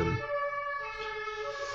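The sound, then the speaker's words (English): An emergency vehicle siren wails steadily as it goes past outside a window, its harmonic tone holding loud and clear for the whole moment, heard through the window with no one speaking. “Siren's going past my window.”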